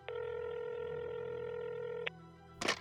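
A telephone tone sounds steadily for about two seconds, fairly loud, then cuts off; a moment later a sharp click follows, like a handset being picked up. Nobody speaks. The phone is let ring half a ring before being hung up.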